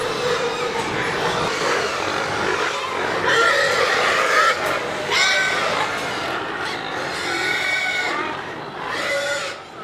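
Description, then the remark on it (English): Many hogs squeal and scream at once in a loud, continuous, overlapping chorus of high-pitched cries that rise and fall in waves, with no talking. The hogs are reacting to the squeaking wheels of the feed cart, which they recognize. “Hogs pay attention to sounds, and they heard the wheels squeaking on that cart, right? So they know that's the feed cart.”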